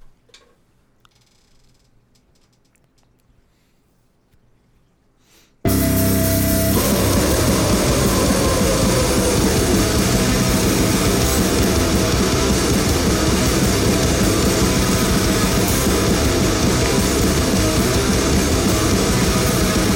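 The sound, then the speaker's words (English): After about five seconds of near silence, a dense, loud wall of distorted heavy metal from an EP track by a New York metal band bursts in and holds steady at full intensity, harsh and noisy, with no voices audible. “They put out a 4 or 5 track EP.”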